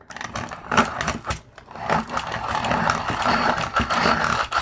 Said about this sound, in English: This is a great pencil sharpener. If you don't have a good pencil sharpener, this Derwent one, it's awesome. You know how, like, some tools are okay? No, this one's awesome. Okay, that's what you do. Okay, now you sharpen your pencil.